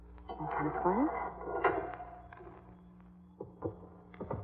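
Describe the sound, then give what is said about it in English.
A heavy mausoleum door in a cemetery creaks open with a drawn-out rising groan, followed by scraping and a few dull knocks and thuds as it swings and settles, moderately loud. “Now, this mausoleum door... it isn't.”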